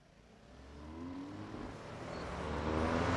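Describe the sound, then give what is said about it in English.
Steady Dublin road traffic on a Friday evening during the weekend exodus from the city, the low drone of car engines building in loudness, a vehicle accelerating over a broad hiss of tyres and background city noise. “Dublin traffic on a Friday evening, during the traditional weekend exodus from the city.”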